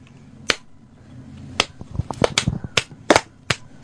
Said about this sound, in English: Ooh, a slow clap.